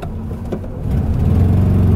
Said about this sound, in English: Got a bunch of cars here. The traffic here, there's some road construction, and there was it merges down to one lane, and this guy was hesitant to get in front of my 1974 Volkswagen Beetle, my dream car.